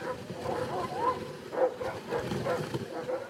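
A team of five sled dogs pulling Thomas Jefferson's open sleigh in December 1800 barks and yips in quick, irregular bursts, moderately loud, over a busy rumbling background with no clear talking.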